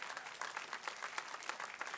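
An audience applauds, a dense, steady wash of many hands clapping with small irregular peaks, moderately loud and sustained throughout with no voices standing out.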